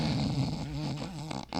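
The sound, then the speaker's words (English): A recorded snore track from the World Series: a loud, rumbling snore drones steadily with a wavering low pitch, breaks off briefly near the end, then starts up again. “I'm gonna put the snore track down from the World Series since we were all there.”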